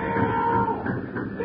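A herd of cattle heading off to the city moos and lows in overlapping, drawn-out calls over a steady rumbling background noise, with no one speaking; the sound stays fairly loud and continuous throughout.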